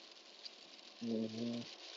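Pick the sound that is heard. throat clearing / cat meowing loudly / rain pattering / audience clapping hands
rain pattering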